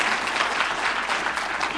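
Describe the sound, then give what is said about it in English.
A church audience claps steadily for a couple of seconds during a sermon, a dense wash of many hands at an even, moderate loudness with no voices rising above it. “You ought to clap there.”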